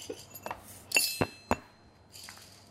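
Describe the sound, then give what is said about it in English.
Glass coffee-maker parts clink and knock together in a few sharp, bright taps, with a light rattle and scraping between them, without any talking. “For easier action, insert into glass tube securely.”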